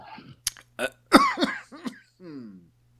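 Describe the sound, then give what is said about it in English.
A loud burst of harsh coughs and throat clearing, several rough hacks in quick succession, trailing off into a low voiced groan. “Had myself a coughing fit.”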